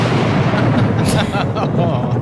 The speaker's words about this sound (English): Just like that, thunder took her out. Just like that, thunder turned into a sound of a gun. Was that a gun or thunder? I don't know. I pulled it off the internet. I think it sounds like when they take that metal sheet and they make thunder out of it.